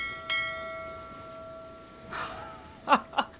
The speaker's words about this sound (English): Oh, no, you don't. You can't just change the subject by ringing the ship bell,